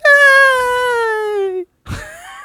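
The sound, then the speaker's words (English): A woman screams in the background: one loud, high, drawn-out wail that slowly falls in pitch, then after a brief break a second, rougher cry that rises. No talking. “So there's a woman screaming in the background.”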